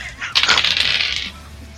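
Dice clatter and rattle across a table in a quick burst of bright, rapid clicks lasting about a second, fairly loud, then fading into quiet.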